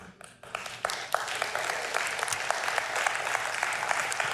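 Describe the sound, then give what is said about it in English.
A crowd applauds, many hands clapping in a dense, steady patter that swells quickly after a brief quiet start and holds at a moderate level throughout, with no talking. “They're clapping.”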